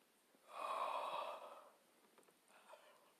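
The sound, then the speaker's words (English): A single long, breathy yawn, swelling and then fading over about a second, followed by a softer exhale. “I'm just yawning.”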